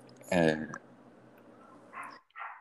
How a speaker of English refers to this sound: Are you getting feedback in the background? I am getting a dog barking.